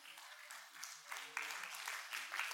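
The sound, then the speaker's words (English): An audience claps for the preacher's wife in a dense, steady patter of many hands that swells slightly in bursts and keeps going for a few seconds, fairly soft overall, with no clear voice above it. “Don't clap for me, clap for my wife, because I'd probably still be doing it because I'm that stupid.”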